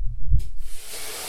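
A low thud as plain water is poured onto hot sauna rocks, followed by a sharp, sustained hiss of steam that spreads bright and airy, fading gradually over about a second.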